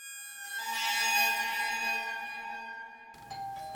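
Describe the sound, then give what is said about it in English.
A doorbell chimes a ding-dong, its bright ringing tones sustaining and slowly fading, followed by a short burst of shuffling noise near the end. “I wonder who that could be. The doorbell doesn't usually ring.”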